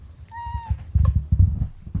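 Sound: cat meowing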